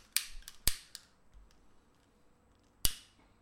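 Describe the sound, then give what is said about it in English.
A lighter clicks sharply several times, three quick strikes followed by a pause and one more, with no flame catching. No voices, only faint background hiss between clicks. “They're going to hear that clicking and be like, these niggas ain't burning shit.”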